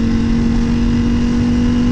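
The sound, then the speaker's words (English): A loud Ducati motorcycle engine drones steadily for the full two seconds, a deep, throaty hum with a constant pitch and no voices over it. “Ooh. Ducati. This guy, not wearing gear.”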